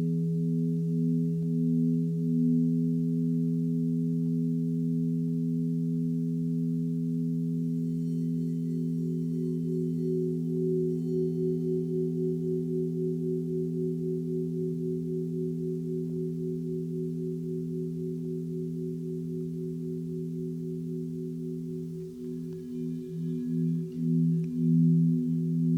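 Tibetan singing bowls played for meditation ring with a steady, sustained hum, several low tones layered together and slowly pulsing as they beat against each other, swelling in waves near the end.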